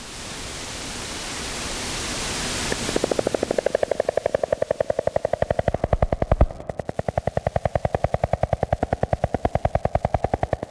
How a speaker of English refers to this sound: There are these other frogs, Columbia spotted frogs, that don't do things in the conventional way. To hear them, you would have to stick your head, or a microphone, under the water.